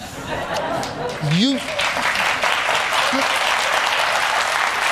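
Steady applause from a crowd fills the whole clip, a dense wash of clapping with a brief rising whoop or cheer early on, and a bit of laughter mixed in.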